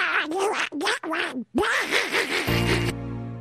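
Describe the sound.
A raspy, garbled Donald Duck voice quacks out a quick, animated reply in several bursts, loud, a person imitating the sound, ending with a short buzzy tone.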